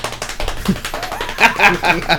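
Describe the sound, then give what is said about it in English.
A quick run of hand taps drummed on a hard surface like a drum roll, fairly loud, with a voice-like sound joining in toward the end. “oh, no, drum roll.”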